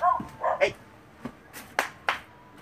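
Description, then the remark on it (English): Dogs bark at the neighbors in a quick cluster of yelping barks followed by several sharper, spaced-out woofs, moderately quiet, with no one talking. “When you work on that, you fill the time, and I'm going to let my dogs inside because they're going ape shit at the neighbors.”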